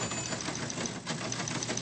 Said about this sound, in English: Oh, dot matrix printer.